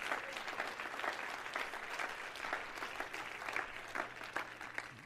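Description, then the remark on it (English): An audience claps their hands together to the Lord in sustained, dense applause, many overlapping claps forming a steady, bright wash for several seconds with no one speaking. “Everybody clap your hands one more time to the Lord.”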